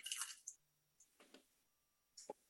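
Olgud Icelandic Wee Heavy beer from Einstock Icelandic Brewing poured into a glass, starting with a soft fizzy rush and followed by a few brief gurgles and splashes. Quiet, with no talking.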